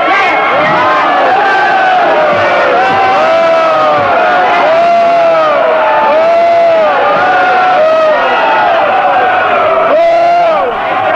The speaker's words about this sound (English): Now, what did you just hear? Anger? Annoyance? A crowd vilifying a public enemy? A radical? A crowd of angry gays shouting down a homophobe?